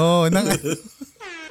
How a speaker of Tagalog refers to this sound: Ano ba nangyari? Bakit napindot yung air horn?